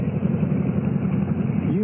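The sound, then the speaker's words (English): A motorcycle engine idles with a steady, low throbbing rumble, holding an even loudness throughout and rising slightly in pitch at the very end. “Boy, I could have run you down with my bike just now.”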